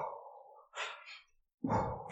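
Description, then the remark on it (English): Loud breathing with no talking from a woman doing breathing exercises during a poker night, right behind a man's ear: a long audible exhale, a quick airy inhale, a pause, then another forceful breath out. “This is like passive-aggressive breathing exercises.”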